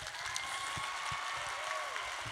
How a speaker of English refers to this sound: So a round of applause for everyone who's in here at the moment.